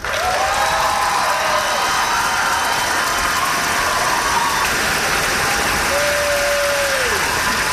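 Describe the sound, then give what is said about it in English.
Loud, sustained applause from a large crowd as an 81-year-old woman with a walker crosses the stage to receive her college degree from Bethel University in Mishawaka, Indiana; a dense, unbroken roar of clapping throughout, with a couple of brief whistles rising above it. “She deserves a big round of applause.”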